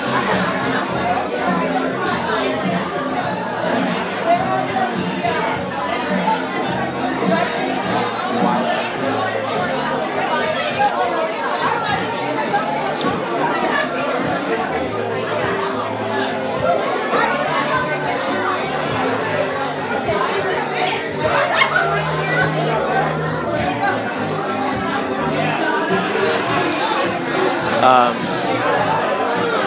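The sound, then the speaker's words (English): Dense crowd chatter in a packed venue fills the whole stretch, many overlapping voices at a steady, loud level, with occasional bright clinks of beer glasses and people drinking poking through the murmur. “You get to hear crowds, you get to hear background sounds, you get to hear beers, glasses, clinking, people drinking, loud and crazy.”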